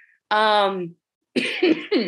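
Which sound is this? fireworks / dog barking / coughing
coughing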